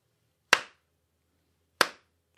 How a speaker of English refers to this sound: Everybody, let's give slow clap for Light.